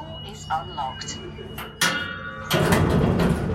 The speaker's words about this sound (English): The door is unlocked.